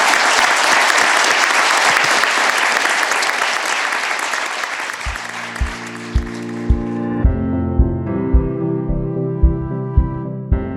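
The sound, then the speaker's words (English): An audience at the Albers Executive Speaker Series at Seattle University breaks into loud, sustained applause for a guest speaker for several seconds. The clapping fades out as music with a steady, thumping bass beat takes over. “Let's give him a round of applause, please.”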